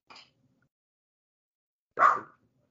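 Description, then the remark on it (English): Dogs bark at a mail delivery: a short, faint yap, then after a long pause one loud, sharp bark. Nobody speaks. “And naturally, my dogs, as sworn defenders of the mailbox, have jumped into action to protect us from any unsolicited mail.”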